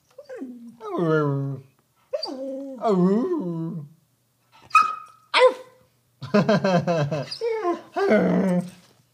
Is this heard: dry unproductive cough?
no